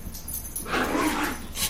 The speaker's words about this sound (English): Those were my ravenous dogs. Ravenous dogs in the background.